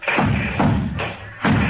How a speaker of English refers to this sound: Hey, who's lighting all these firecrackers? That's me, officer. I'm the one.